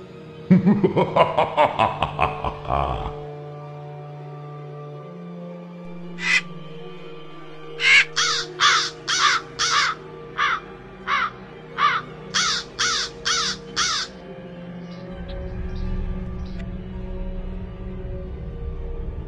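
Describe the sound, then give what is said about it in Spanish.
A crow caws again and again, loud, with harsh calls coming in quick bursts of two to five over a low, steady drone, after an opening stretch of dense, raspy noise. “Historias del más allá, en la voz de un cuervo.”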